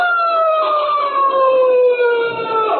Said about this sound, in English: Listen, hey, that's a police siren. Sounds like they're almost on top of us. Yes, there they are. Look out, they're going to pass us. Pass nothing, they're flagging me down.